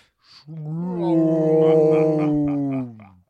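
A voice imitates a whale swallowing Derek: one drawn-out, low, rumbling growl with a faint pulsing texture, fairly loud, swelling and then fading over about three seconds.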